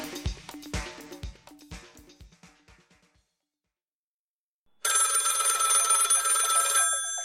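A telephone bell rings loudly and continuously near the end, following a short run of plucked tonal notes that fade into a brief silence. No one speaks.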